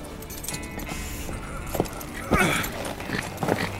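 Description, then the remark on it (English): A few irregular, sharp knocks like horse hooves clopping on hard ground, over a steady noisy background with some faint vocal sounds. “I told you all horses were a bad idea.”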